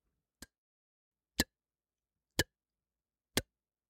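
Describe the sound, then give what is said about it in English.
A clock ticks four times at a steady one-per-second pace, each tick a sharp click separated by silence, with no voices. “That was 5 ticks for you to click the button.”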